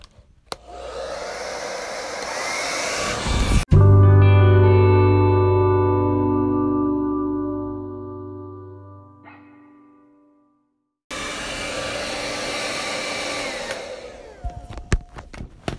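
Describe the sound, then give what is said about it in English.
A blow dryer drying hair runs with a loud, steady roar, then switches off and its motor whines as it winds down. After a short silence it starts blasting again, with no talking. “Also, this blow dryer, I will link the name in the description.”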